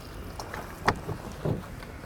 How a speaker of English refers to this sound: It has the little drain hole in the bottom there and you can see it here. So we will see how this handles it, and we'll just pour some water in there.